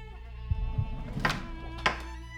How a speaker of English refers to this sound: Is the door open? And then I open the door wide open.